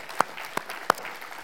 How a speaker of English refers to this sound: Thank you so much to our praise band. Thank you for leading us in worship. Did you have fun in worship today? It's okay if you did. Man, what a great time. How about we applaud how the Lord has used them today? Thank you.